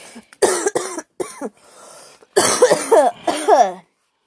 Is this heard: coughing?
yes